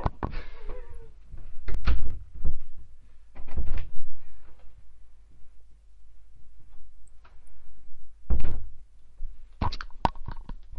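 A room door is opened and closed to let a cat out: a few thuds and a latch click, a pause with quiet shuffling, then a firm close with sharp knocking thunks near the end. No one speaks.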